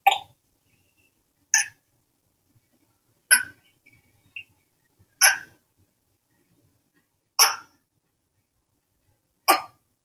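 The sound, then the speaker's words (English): A gecko chirping: six short, sharp chirps spaced evenly about two seconds apart, clear against a quiet background, with no talking. “And here, let me play just a little clip of a gecko chirping.”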